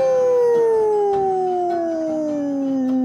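A single long wolf howl, loud, holding one drawn-out tone that slowly slides downward in pitch over a few seconds with no other sounds around it.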